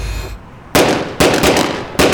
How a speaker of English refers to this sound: Suddenly, the sound of gunshots erupts in the air.